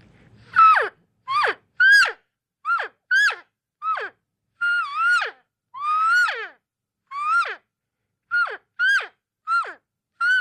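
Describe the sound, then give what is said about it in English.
An elk call imitates about a dozen short, nasal cow mews, with a few longer, higher, wavering bugles in the middle, each burst clear and separate with brief pauses between and no talking. “You know, you don't have to really blow hard on it or anything, but here's just a couple little cow calls with that, and I'll do a couple bugles.”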